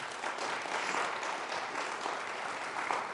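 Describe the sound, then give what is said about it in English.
An audience applauding volunteers steadily for about three seconds, a dense, even wash of many hands clapping together at a fairly strong level, with no voices standing out. “I applaud you today for what you did.”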